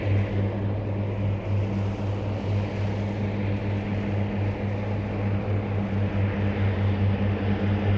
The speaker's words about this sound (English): There goes another plane taking off in the distance.